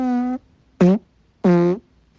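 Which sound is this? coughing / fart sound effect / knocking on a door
fart sound effect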